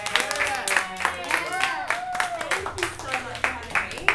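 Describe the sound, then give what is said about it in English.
A short burst of applause for a guest on the show Studio Streamers, irregular clapping mixed with cheering and whooping voices rising and falling throughout, fairly loud and lively for about four seconds. “Should we all give her a big round of applause?”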